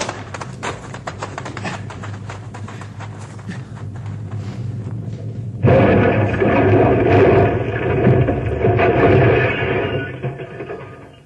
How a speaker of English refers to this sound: Second rock came rolling down the mountainside and hit our car and flattened it. We get out just in time.